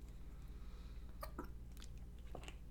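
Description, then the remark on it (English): Quiet mouth sounds of someone sipping water: a few short wet slurps and gulps spaced irregularly over a low steady hum, with no talking. “as I take a sip of water here.”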